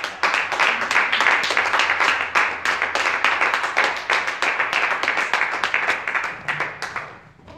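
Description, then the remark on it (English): An audience claps as praise to the Lord, dense, sharp hand claps forming a continuous wash of applause that holds for several seconds, then thins out and fades at the end. No one speaks. “Come on and give the Lord another hand of praise.”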